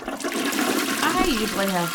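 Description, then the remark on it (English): A toilet flushes with a steady, loud rush of water lasting about two seconds, with faint voice-like tones rising briefly underneath. “I go to the bathroom a lot.”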